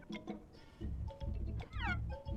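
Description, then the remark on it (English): Several cats in a video, reluctant to get wet, meow in short, overlapping cries, one rising and falling plaintively, over a low steady rumble, sounding like a recording played back at moderate volume. “These cats really don't. They really don't want to get wet.”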